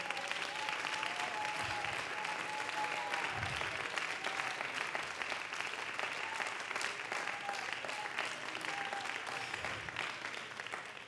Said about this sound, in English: Come on, clap your hands with me right now.